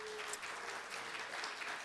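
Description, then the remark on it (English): An audience claps at a church service for a member's birthday, a steady, dense, sustained wash of applause with no pauses, rising and falling slightly over about two seconds. “It's we'll give him a round of applause.”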